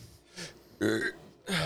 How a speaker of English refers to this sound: I haven't done that in the mic in a while. Burp. Good old burp.